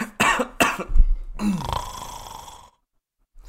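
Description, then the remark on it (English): An exaggerated cartoon-style snore made by a voice: a couple of sharp, throaty snorts followed by one long, drawn-out rasping exhale that trails off into silence. “I thought I heard a very vaudevillian cartoon snore coming from your end.”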